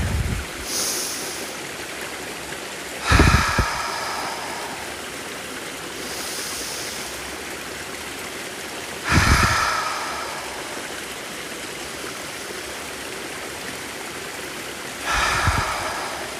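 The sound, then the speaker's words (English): Steady rushing water of a waterfall fills the scene with a continuous broad hiss, swelling into louder surges every few seconds before settling back to a constant roar. No voices are present. “Try to visualize this waterfall.”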